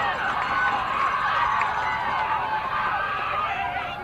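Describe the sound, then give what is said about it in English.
The Eagleville crowd at a softball game, on their feet and wanting a strikeout on a 2-2 pitch, many voices cheering and shouting together at an even, fairly loud level that holds for several seconds before easing slightly. “The Eagleville crowd wanting a strikeout.”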